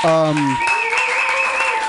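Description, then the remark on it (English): An audience at a live comedy festival applauds in a steady, dense wash of clapping that starts right after a brief sustained voice, with whoops and voices mixed into the applause throughout. “And give a huge round of applause to yourselves for coming out to support live comedy.”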